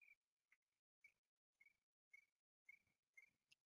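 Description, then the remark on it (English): A person mimics a cricket with a series of short, high-pitched chirps repeated about every half second, fairly clear with no talking. “I can make a cricket noise and a Chewbacca noise.”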